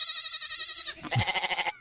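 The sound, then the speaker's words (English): A single sheep bleat, opening as a steady wavering cry and breaking into a rapid, trembling quaver before cutting off after about two seconds, with no talking around it. “By the way, I don't think goat and sheep are related.”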